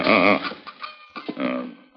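animal, horse whinnying

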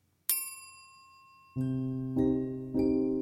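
signal or alarm, bell ringing

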